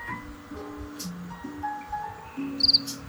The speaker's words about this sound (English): What the fuck is this cricket doing?